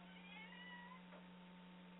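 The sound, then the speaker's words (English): A single drawn-out meow from a female cat, rising and then sliding down in pitch, over a steady low hum, with no one speaking. “Yes, that's why she meows.”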